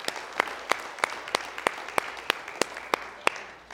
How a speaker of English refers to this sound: Let's give him one more hand clap if you wouldn't mind, please.